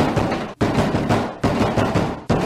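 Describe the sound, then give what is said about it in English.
Loud, hard banging on a door at around 10:30 at night, pounded in rapid repeated bursts with brief pauses between them, forceful, with no voices. “Around 10:30 that same night, somebody was banging on my door hard.”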